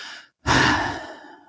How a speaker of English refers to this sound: I just had to punctuate that with a fart.